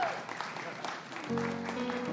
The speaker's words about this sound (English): Amen. You can clap for that. That's all right.